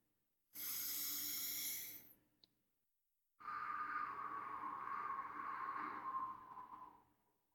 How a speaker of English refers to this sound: The way that I heard it described is you breathe in slowly, and then you exhale as if you are breathing out of a straw.